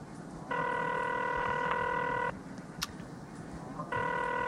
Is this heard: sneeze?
no